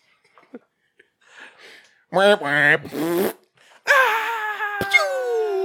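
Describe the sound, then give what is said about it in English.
A laser beam sound effect, apparently imitated by a voice: a burst of warbling, buzzy tones, then a long drawn-out zap that slowly slides downward, loud, with no other talking. “What was that one? That was a laser beam.”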